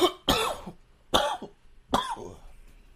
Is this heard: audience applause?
no